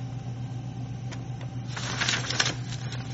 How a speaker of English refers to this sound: And also, I'm going to do one final test before I finally tighten the O-rings, and that is, I'm going to take a page of paper and place it in here like such.